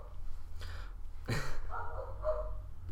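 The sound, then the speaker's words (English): Dogs at a studio bark a few times, muffled, with one sharper, louder bark near the middle over a low background hum. Nobody speaks. “Yeah, we have dogs. They warn us when leaves are falling.”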